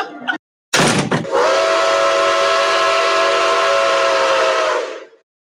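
A loud, steady train whistle blows for about four seconds as a 10-coach train departs from platform one, after a brief clunk and hiss, holding a bright sustained tone before cutting off.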